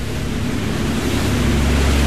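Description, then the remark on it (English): Loud, continuous sea waves surge and wash through the archway of Bull Rock, a narrow passageway cutting through the rock, echoing with a deep rumble as if enclosed by rock, with a steady low engine-like hum underneath and no voices. “Now we're going through the archway of Bull Rock. Right underneath, it's an amazing cauldron, like a hallway going into another world.”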